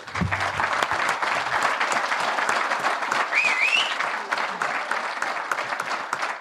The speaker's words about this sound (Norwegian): en liten applaus for dem eller? Yes ja.